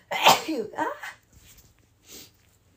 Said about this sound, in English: I gotta sneeze. Hold on. Pardon me.